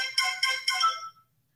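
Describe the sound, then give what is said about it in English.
A phone's text message alert for an incoming family chat text rings out: three quick, bright electronic chimes in a rising pattern with a short fading tail, clear, with no voices. “Let me turn my phone down here because I got text coming in.”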